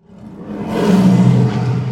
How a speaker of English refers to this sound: And then the lion roared again. Only this time, he was much closer.